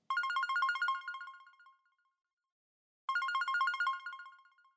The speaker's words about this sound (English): When suddenly, I heard a familiar beeping coming from my hip belt.